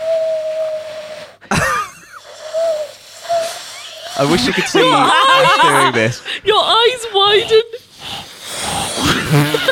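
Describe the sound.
A person imitates an owl, holding a steady, mid-pitched hoot before a sharp breathy burst and a few shorter hoots, then breaks into lively talk with chuckling.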